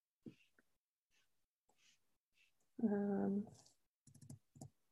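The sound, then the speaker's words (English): Sparse, irregular clicks of typing on a computer keyboard, fairly quiet, with a short burst of quick keystrokes near the end. A brief hummed voice sounds partway through. “I'm going to type these in and mute myself I'll keep myself unmuted, but.”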